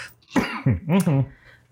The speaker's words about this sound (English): I'm doing a dab now. Oh my gosh. So apologies if like I have to stop and cough for like 5 minutes.